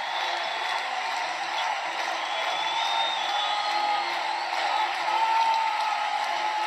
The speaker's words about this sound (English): That crowd could barely contain its excitement. I can't say I blame them.